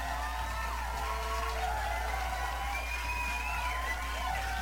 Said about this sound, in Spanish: Y pues un aplauso a la hermosa y sabrosísima Romy Rain, viejo ronón de viejo ronones.